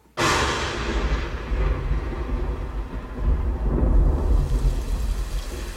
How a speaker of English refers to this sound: But there's a fierce and thundering storm outside.